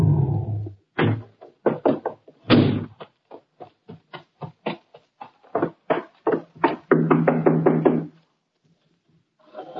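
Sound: knocking on a door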